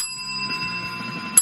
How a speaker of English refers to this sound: Oh, it's broken. Oh, what the hell? The bell's not. Hang on. We got a repair job we got to do here. What the hell? Sometimes. Oh, we can't have this not working. Come on, not this bell. No, it doesn't seem right.